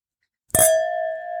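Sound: glasses clinking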